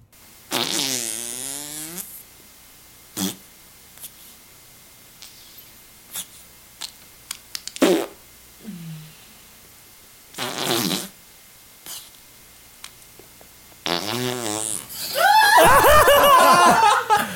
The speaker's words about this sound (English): Close-up queefing.